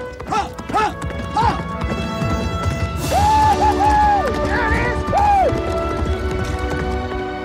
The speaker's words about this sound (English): Fast? Your horse just broke the track record attempt for him. Well, I just think this horse has a lot of heart.